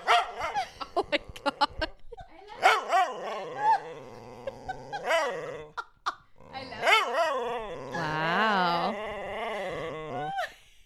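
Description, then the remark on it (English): A male dog with the microphone held in his face fires off a quick burst of sharp barks, then breaks into long, wavering howls and whiny, yowling vocalizations that rise and fall for several seconds. “It's a dog, not a child. And he's mad at us right now.”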